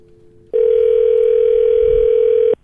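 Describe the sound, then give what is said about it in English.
A phone line rings once on the caller's end as a call is placed to a friend: a loud, steady electronic tone holding for about two seconds, then cutting off. No voices are heard. “We're going to call her right now and get the story.”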